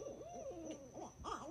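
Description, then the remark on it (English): An owl hoots repeatedly in quick succession, each call bending up and down in pitch, clear over a faint, steady high-pitched whine in the background. “I ended up giving this owl a big old rat.”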